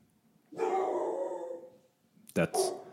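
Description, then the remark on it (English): A dog, Emma, barks: one long, drawn-out howling bark, then a short pause and two quick, sharp barks in a row. “She barks a lot. She'll be in the background from time to time.”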